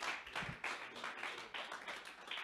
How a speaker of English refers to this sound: And if you believe that tonight, can you give the Lord a hand clap of praise tonight?